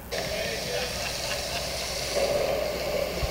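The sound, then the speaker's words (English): Steady rain from a storm, a dense, even hiss of falling drops that holds at a constant level throughout, with a faint low rumble beneath. “You hear those raindrops? Storm, man.”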